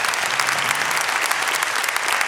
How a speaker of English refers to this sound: And let's praise him with a clap offering today. He's worthy.